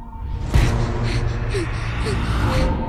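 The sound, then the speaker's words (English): A girl panting in quick, breathy gasps that repeat steadily over a low, droning background, fairly loud, with no spoken words, in a movie trailer. “It starts with the girl. A girl panting?”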